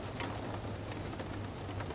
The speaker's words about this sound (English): So, as you listen to the sound of the rain on your window, whilst you lay comfortably in bed, tucked up warm and safe, relax a little more.